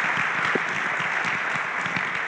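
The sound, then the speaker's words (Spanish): A crowd applauds steadily for the Lord at a church service, dense overlapping claps filling the space at an even, fairly loud level, with no talking over it. “Let's give the Lord a clap off. Un aplauso para el Señor.”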